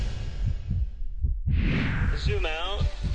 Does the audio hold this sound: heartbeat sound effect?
yes